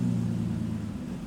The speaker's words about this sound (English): He exits the building into the car park and jumps into his black BMW and burns off into the night.